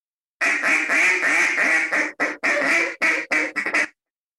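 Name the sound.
duck call being blown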